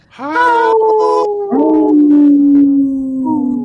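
Wolves howl together in long, sustained, gently falling tones, with several voices overlapping and a new howl joining partway through. The sound is loud, with no talking.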